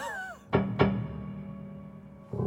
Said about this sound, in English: Wow. All kinds of wonderful percussive effects. And what's happening there? You're stopping it from ringing? I'm dampening the string, but I have the sustain on, so when the hammer strikes it, it makes that wonderful sound.